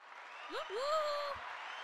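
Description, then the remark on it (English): A steady wash of crowd applause, played as a sound effect, fills the whole clip, with a rising whoop or cheer cutting through it in the middle before the clapping carries on. “Which one is the clapping one?”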